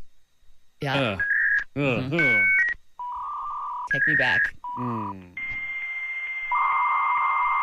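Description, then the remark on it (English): Steady electronic dial-up modem tones and beeps, interrupted by brief speech, then giving way to a sustained hissing screech with high tones of a modem handshake, fairly loud. “still use dial-up? No, they don't. Yeah, 3% of Americans still How? Use dial-up. I don't know. Who still provides that service?”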